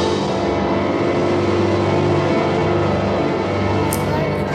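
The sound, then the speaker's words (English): A garbage truck's heavy diesel engine rumbles loudly and steadily as it drives past, its low drone filling the whole stretch, with a brief high-pitched squeal near the end. “We love you, garbage truck.”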